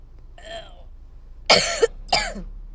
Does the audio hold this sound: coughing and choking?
yes